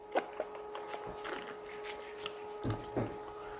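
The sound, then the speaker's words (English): Soft, wet sloshing and squishing as water is swished around inside a mouth to rinse the palate between whiskey samples, quiet, with irregular little gurgles and clicks over a faint steady hum. “Go on, rinse your palate out. You know, swish some water around in there. Swishing it.”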